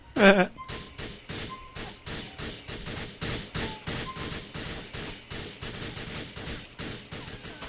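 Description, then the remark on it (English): Rapid gunfire in the video game Grand Theft Auto 4: a steady stream of sharp, punchy shots repeating several times a second, with a louder burst at the start and muffled thuds and game noise underneath. “Now they're shooting you and they're going to kill you.”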